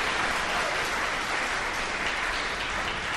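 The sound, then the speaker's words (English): A crowd claps steadily as a clap offering to the speaker's wife, a dense wash of applause sustained at even loudness throughout, with no voices standing out above it. “I want to give her a clap offering.”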